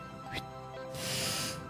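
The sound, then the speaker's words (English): A failed attempt at a shrill whistle: a couple of short breathy puffs, then a half-second rush of airy hiss with no clear tone, fairly quiet. “I can't do that shrill whistle. But she definitely does that. But it comes out sounding like this.”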